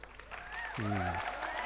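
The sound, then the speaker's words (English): A small audience claps in a brief, scattered burst, with a voice briefly sounding over the applause midway through. “I love those claps.”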